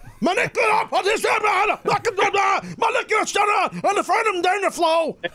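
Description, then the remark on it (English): A voice imitates a frantic commentator, yelling and screaming incoherently in rapid, strained bursts of wordless syllables, loud, with pitch swooping up and down for several seconds. “…'s looking at a thesaurus screaming”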